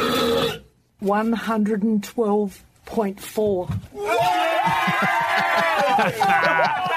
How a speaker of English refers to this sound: Would you like to hear the burp? Yes. I think so. Right, that's my question, because it's so gross. Early in the morning. Yeah. Okay, here is the burp and the reaction.